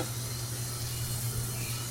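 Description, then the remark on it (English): Steady fizzing and crackling of bubbles in the bottom of soapy dishwater while dishes are washed, a continuous hiss with a faint low hum underneath and no voices. “Can you hear the bubbles in the bottom of the dishwater?”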